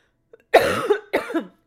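Two loud, close coughs in quick succession, each a harsh, raspy burst with a slight throaty tail, separated by a brief pause and otherwise surrounded by silence.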